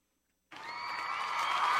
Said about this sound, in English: I think that deserves an applause.